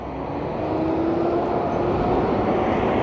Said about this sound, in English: Oops, big truck.